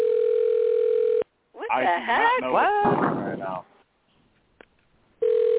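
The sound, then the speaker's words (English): A telephone ringing tone sounds over the phone line, a steady electronic burst that cuts off, then garbled, warbly voices, a quiet gap, and the ringing tone starting again. “I hear a phone ringing.”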